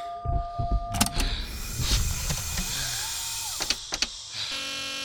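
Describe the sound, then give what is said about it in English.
An emergency door seals shut after the red emergency seal button beside it is pressed: a steady motorized whir punctuated by sharp mechanical clunks and clicks, with a few louder latching thuds near the end before a low hum settles. “It's the red button to the left of the door marked emergency seal.”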